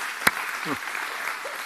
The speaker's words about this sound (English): We're so glad to have you here at both of our campuses, and we're just glad to have those that are joining us online as well, and hope that you've come today expecting a blessing. If you did, give God a praise clap. If you didn't, don't.